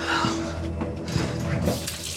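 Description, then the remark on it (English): Hot water runs steadily from a tap into a basin for hand washing, a continuous splashing rush with a faint voice murmuring underneath. “The water's too hot. It has to be hot to get you clean.”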